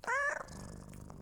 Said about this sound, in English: Anyhow, Arthur rubbed Blackie under her ears, and the black cat liked it and purred in the boy's arms.